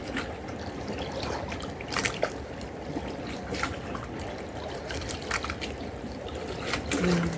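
trickling water

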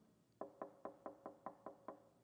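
knocking on a door

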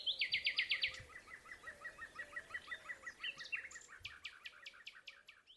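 birds singing

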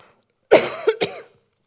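coughing

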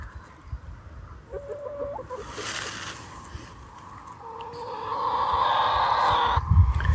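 hens clucking

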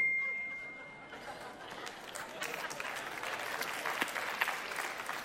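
audience applause

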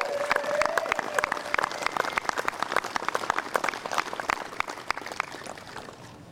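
audience applause

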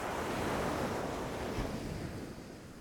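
ocean waves and surf

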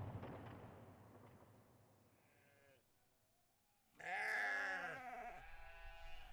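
sheep bleating

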